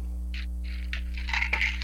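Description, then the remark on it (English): Pills rattling in a plastic bottle, shaken in several short bursts that grow busier toward the end, fairly clear over a low, steady background hum. “What are you playing, dice? No, I'm just sick as a dog, and I've worked every day for the last 3 weeks, so it's that whole juggling the pills and juggling the sleep”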